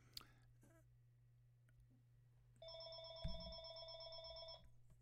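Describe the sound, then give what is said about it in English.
A telephone rings with an incoming call, a steady electronic tone for about two seconds, clear over a low background hum, with a brief thump partway through. “Okay, I've got a phone call coming in, but they'll leave a message if it's important.”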